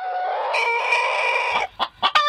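An angry fighting rooster lets out one long, loud, strained crow, then follows it with a few sharp, agitated clucks, with no other sounds.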